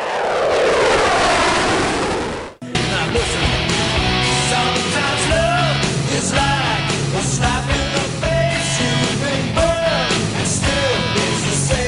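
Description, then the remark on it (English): A fighter jet buzzes the tower, roaring past low overhead, a loud sweeping whoosh lasting about two seconds before cutting off abruptly into a steady rhythmic music track. “The first of 20 F-35s will arrive on base.”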